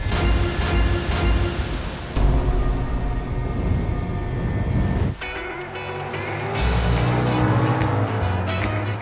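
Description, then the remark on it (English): Loud, continuous engine roar of race cars speeding past at Daytona Beach, with surging revs and shifts in pitch as vehicles rush by, no talking. “Daytona Beach can be a loud place. It's known for auto racing, motorcycle rallies, and beaches that draw throngs of tourists.”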